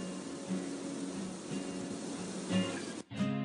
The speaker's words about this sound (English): The wind whisking through the trees.